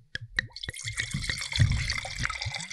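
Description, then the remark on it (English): Napa Valley wine is poured into a glass, opening with a few quick splashes and glugs before settling into a steady, bubbling pour. No one speaks. “Ah, that was a beautiful Napa Valley pour this morning.”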